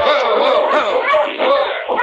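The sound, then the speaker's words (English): Two opposing sled dog teams, meeting face to face on a trail and halted just before clashing, yelp, yip and whine all at once in a loud, continuous clamor, with no one speaking. “Shorty halted his team with difficulty, barely in time to prevent a clash between the opposing sled dogs”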